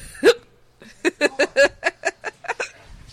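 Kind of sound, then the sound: human body sound, hiccups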